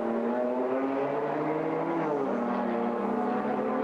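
A Mercedes GT4 race car, number 163, leading the SP10 class, roars loudly and steadily, its pitch dropping midway as it sweeps past at speed heading into Tiergarten and Hohenrein. No voices are heard.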